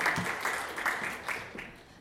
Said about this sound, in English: So big round of applause. Big round of applause.